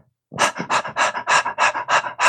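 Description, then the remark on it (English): A person imitates a dog panting: about eight quick, breathy huffs in a steady rhythm, fairly loud, with no other sounds around them. “And a moment later, you hear a panting, like a”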